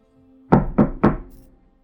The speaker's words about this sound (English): I knock again. No answer.